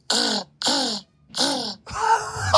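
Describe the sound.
A man's voice mimics an exotic bird with three loud, raspy, squawking calls in quick succession, followed by a longer, noisier screech.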